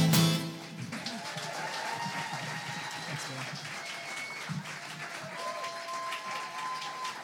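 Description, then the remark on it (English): A crowd at a benefit event applauds a performer after a song, steadily for several seconds, a dense, even clatter of many hands clapping, with scattered cheers and voices rising over it. “Can we just one more round of applause for this rock star right here?”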